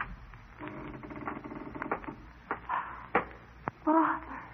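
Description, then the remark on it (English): A door is unlocked and opened: a run of metallic clicks and rattles from the lock and latch, a few sharper knocks, then a brief creak as it swings. “He would be afraid if his door was left unlatched.”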